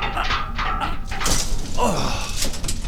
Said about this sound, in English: help me get this door open. Oh, it won't budge. Keep trying.